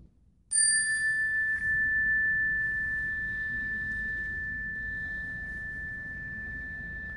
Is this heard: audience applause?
no